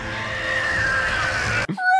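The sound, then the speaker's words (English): A voice imitates a Ringwraith's piercing shriek: one loud, harsh, rasping screech held for over a second, then cut off abruptly and followed by a brief, thinner whistling tail. “Those characters in general gave me nightmares with the screaming.”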